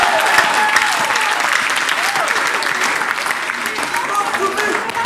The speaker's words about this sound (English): Can you clap a little in church?